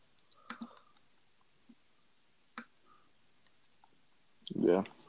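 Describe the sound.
Sparse, light key clicks from a computer keyboard, a few taps spread irregularly across several seconds, fairly quiet and close, followed by a short louder burst of voice at the end.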